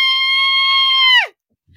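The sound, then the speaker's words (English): A performed hideous, blood-curdling screech during a dramatic reading: a voice lets out a loud, piercing, high-pitched screech, held steady for over a second before the pitch sags and cuts off abruptly, leaving silence. “A hideous, blood-curdling screech hopefully again won't come from the opened red lips.”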